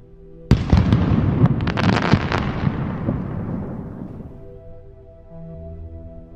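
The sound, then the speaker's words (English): Fireworks go off with a sudden loud bang, followed by a dense flurry of crackling pops and sparkles that fade over a few seconds into a low, lingering rumble. “A thousand fireworks exploded in her mind.”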